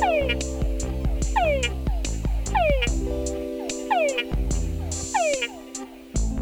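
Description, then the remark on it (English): Túngara frogs calling: a rhythmic series of descending whines, several per second-long stretch, some followed by short, lower-pitched chucks, over a steady background chorus of other frogs. No voices. “The call of the Tungara frog has been described as a whine, followed by 0 to 6 lower-pitched chucks.”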